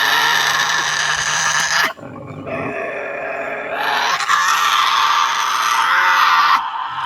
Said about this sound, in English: Dude, that's a sick scream. Holy shit.